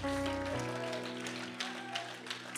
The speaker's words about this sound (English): If you clap your hands just one more time, just solidify it, seal it up with praise.